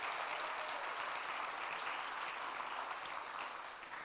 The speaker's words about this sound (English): So let's give them a round of applause and welcome them in as members.